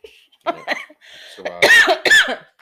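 A person coughs several times in quick succession, starting with a couple of lighter hacks and building to two loud, harsh coughs near the end.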